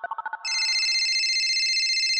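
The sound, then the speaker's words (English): A quick run of five short electronic beeps gives way to a loud, sustained warbling phone ringtone, clear with no voices. “You guys, it's time to phone a friend.”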